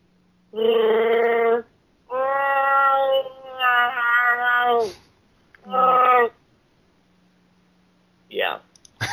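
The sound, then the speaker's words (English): A person imitates a Wookiee roar with a series of loud, warbling, drawn-out vocal growls, the longest stretching over two seconds, then a shorter bellow and a brief final yelp. “Hello, and this is my Wookiee roar.”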